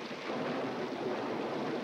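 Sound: thunder clap sound effect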